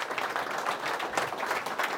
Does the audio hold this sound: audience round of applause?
yes